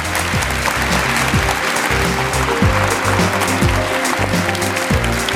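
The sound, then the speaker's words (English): An audience applauds a panel at ZeroCon for about five seconds, a dense, continuous wash of applause at a fairly loud, even level, with a low droning hum running underneath. “If you give them a round of applause, please.”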